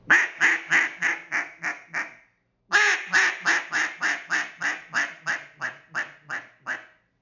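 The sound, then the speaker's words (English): A J-frame double reed duck call, blown with too much air so the reed cannot open and lift, squeaks out two descending runs of raspy, quack-like notes, about seven then eleven evenly spaced blasts, each run fading in loudness, with a short pause between and no talking. “You hear that squeaking? I'm not being able to open and lift that reed without that burst of.”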